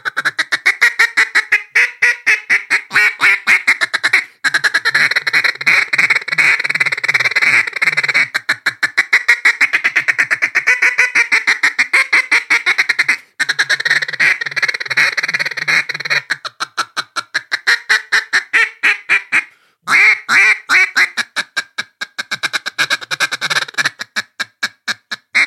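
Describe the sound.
A duck call mimics a mallard hen with rapid, chattering single and double cut notes, loud, running almost nonstop for the whole stretch with only brief pauses and no talking.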